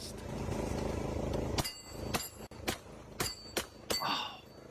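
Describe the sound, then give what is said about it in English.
A lawn mower engine drones steadily and loudly, then cuts into a series of about six sharp, sputtering bursts with brief gaps between them. No voices. “Board mowing the lawn.”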